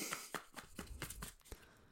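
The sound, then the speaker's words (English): Someone shuffles a Starseed Oracle card deck for a collective reading, producing a quick, soft run of papery slaps and taps at a steady rhythm, quiet and with no talking. “So I'm just going to shuffle.”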